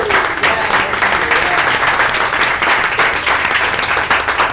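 A crowd applauds steadily for several seconds, dense overlapping claps filling the room at a fairly loud, even level with no clear voices on top.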